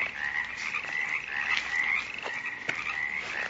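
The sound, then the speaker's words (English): A dense chorus of frogs croaks and trills steadily at night in a ravine, a continuous high-pitched buzzing layer with a few sharper clicks standing out, at moderate volume with no voices. “The crickets and frogs, they're listening.”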